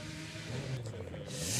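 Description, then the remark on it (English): A special racing car rolled in by Jenson Button idles and revs in the assembly area with a steady low rumble, the pitch climbing slightly toward the end, fairly loud against a busy outdoor background. “Jenson Button's rolled in a rather special racing car, and Andy Jay has appeared beside him.”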